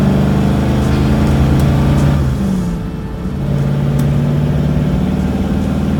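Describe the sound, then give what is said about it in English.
A car engine roars loudly and revs hard, its pitch dipping briefly as it shifts gear before climbing again into sustained acceleration with no voices, as the car is slammed into drive and floored at dawn, smoking its back tires, heading up Arizona State Road 85. “Switched on the headlights, slammed the car into drive, hit the gas, and smoked the back tires, as I headed up Arizona State Road 85.”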